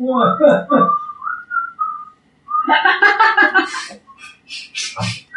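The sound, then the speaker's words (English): Someone whistles a short tune, clear pitched notes gliding between phrases, with voices and breathy laughter mixed in around the whistling. “Somebody was actually whistling that on the street the other day.”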